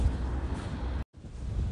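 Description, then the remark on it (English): Strong, cold wind roars and buffets steadily with a heavy low rumble on a very cold, windy day, broken by a brief moment of near silence before the gusting resumes just as loud. No one speaks. “And it's just incredibly windy actually at the moment.”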